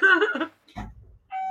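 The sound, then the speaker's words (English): An electronic door chime from an office security system rings out clearly as the office door is opened, followed by a dull low thump like the door moving, and then the chime tone starts sounding again as the door is closed, fairly loud. “We also have a security system that alerts my legal team every time my office door is opened or closed. So that ding dong, yeah, so that ding dong, you'll hear it now again.”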